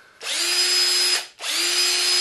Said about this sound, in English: Here is a drill.